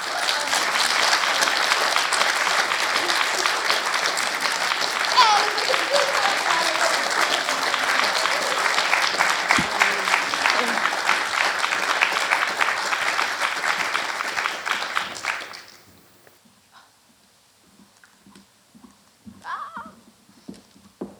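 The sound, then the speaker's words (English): An audience applauds steadily for about fifteen seconds as guest speakers come up on stage, a dense wash of clapping hands, before it fades out and leaves near silence with a few faint stray sounds. “And with that inherent tension in mind, I will ask the guest speakers to come up on stage, if we can give them a round of applause.”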